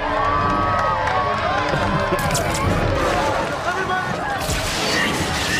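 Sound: crowd cheering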